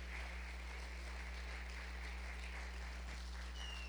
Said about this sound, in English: And if you agree with that, give God a hand clap in this house.